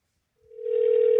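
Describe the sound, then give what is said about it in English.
A steady telephone dial tone, heard while a call is being dialed on a phone, starts after a brief silence and quickly swells to a loud, continuous hum, holding unbroken to the end with no voices. “I'm going to start dialing.”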